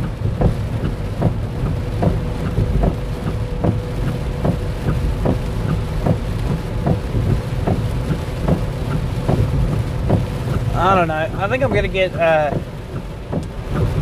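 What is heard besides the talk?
heavy rain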